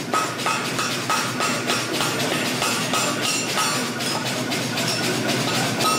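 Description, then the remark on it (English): A steady series of sharp knocks as a piece of wood strikes the tip of hot metal over an anvil horn to knock the tip down, each hit ringing with a bright metallic tone, repeating at an even, brisk rhythm with no talking. “So now I'm going to take that piece of wood again, go over the horn, just knock the tip down.”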